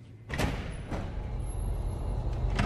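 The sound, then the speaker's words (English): A heavy secure door into the Germplasm Library seed vault at Pioneer's Johnston, Iowa R&D campus opens with a few sharp mechanical clunks spread over a low, steady rumble, fairly loud, with no one talking. “Right outside this secure door. Let's go inside.”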